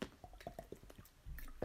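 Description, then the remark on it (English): Quiet gulps of a drink: a quick run of wet swallowing clicks and squishy liquid sounds, a few in steady succession, ending with a soft low rush, with no talking. “That was a guzzle.”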